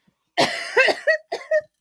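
A harsh coughing fit, close and loud: one long rasping cough followed by several quick, sharp hacks in a choppy burst, with no speech.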